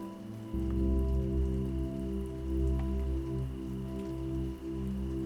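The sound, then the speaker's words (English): Soft, steady rain patters gently on a window throughout, with occasional faint drop taps, beneath a warm, sustained low musical drone that swells in after a brief moment. No one speaks. “As your body melts deeper into your bed, see if you can notice the soft sounds of raindrops in the background.”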